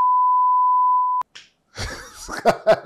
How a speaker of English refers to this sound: Beep that out, editor, please.